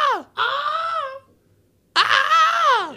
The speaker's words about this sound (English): I'll go first, and then I'll play the Wilhelm scream. What is it? Like a minute long scream. Oh, it's the stormtrooper scream.